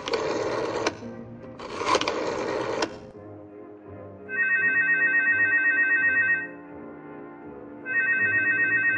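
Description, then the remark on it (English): A telephone rings twice, each trilling ring lasting about two seconds with a pause between, following a couple of short bursts of rough, noisy clatter at the start. “I think you have a phone call to make.”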